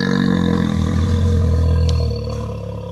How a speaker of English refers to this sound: They played a recording of a bear growling.